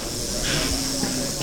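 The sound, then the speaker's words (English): A tagged rattlesnake, its head secured in a tube while guests stroke it in a barn on a private reserve, rattles in a steady, dry, high-pitched buzz that holds without pause, with a faint voice murmuring underneath. “Few people get to visit this private reserve, but in this modern barn, which serves as the main building, there's a group having a close encounter with a rattlesnake.”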